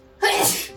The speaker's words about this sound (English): Bless you.